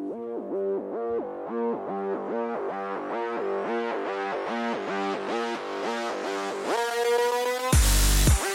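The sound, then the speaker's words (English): Pulsing electronic intro music for the show DLC repeats a bright, rhythmic synth pattern that grows steadily brighter, until a loud, heavy bass hit crashes in near the end. No voices are heard. “There it is. When that bass crashes in, you know, it's time to begin.”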